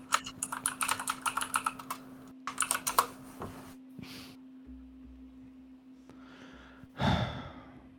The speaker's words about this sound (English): The typing is so loud.